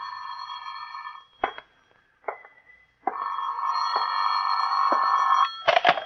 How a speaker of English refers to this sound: Phone's ringing